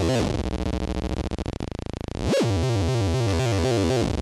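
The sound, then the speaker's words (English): A buzzy synth oscillator tone with pulse width modulation, its harmonics shifting and phasing. Midway it thins out, then a quick pitch swoop brings back a loud, rhythmically rippling timbre. “The red, tone and ripples. Magenta pulse width modulation.”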